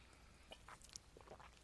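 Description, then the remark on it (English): Quiet crackling and a few small clicks as the twist cap of a bottle of MD 20/20 Electric Melon wine, 13% alcohol, is cracked open, with no voices. “'Cause here I'm gonna crack it open here.”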